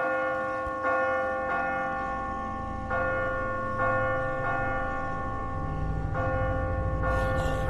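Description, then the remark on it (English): A giant tower bell, rung by pulling a thick rope beside it, rings repeatedly in a steady rhythm, each heavy strike blooming into a long, resonant hum that overlaps the next. It is loud, with no voices. “All there is, really, is a giant bell right in the middle. A few solid rings of this and there'll be thousands down below.”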